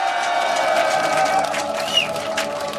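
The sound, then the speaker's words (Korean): A crowd of about 250,000 at the Gwanghwamun candlelight rally, in front of the TBS broadcasting station, cheers in a loud, continuous roar that holds steady for the whole stretch, with a brief rising whistle-like squeal cutting through partway in. “오늘 한 3만 명 더 나오신 25만 명이 지금 우리 TBS 방송국 앞에 있습니다. 힘찬 환호를 한번 보내주시기 바라겠습니다.”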